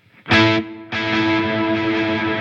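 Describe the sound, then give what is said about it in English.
An electric guitar played through a Heliosphere stereo delay pedal, not connected in stereo, rings out with a bright, effected tone, striking a short burst, pausing briefly, then sustaining a full, washy chord with lingering delay and reverb trails. “So, and then I've got a stereo delay.”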